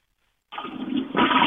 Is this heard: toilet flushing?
yes